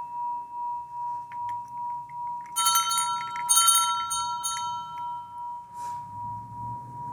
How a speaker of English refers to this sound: So each, we can use the sound of the bell as pointer to this spacious container of awareness in each one of us.